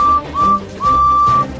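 Percy, a small steam engine, peeps his whistle three times at a steady, fairly high pitch as he chases after Diesel 10: two short toots, then a longer held one, over a low rumbling background with no talking.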